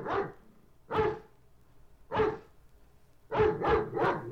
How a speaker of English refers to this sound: Let's just listen to some barking for a minute or so.